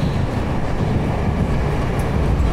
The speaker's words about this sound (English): You might hear the sounds of a train above me, because this coffee shop is underneath the train tracks. Namba Station is a big train station here in Osaka.